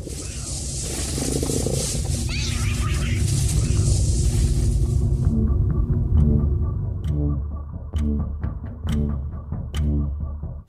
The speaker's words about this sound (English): It's attacking your cat, like a coyote or something.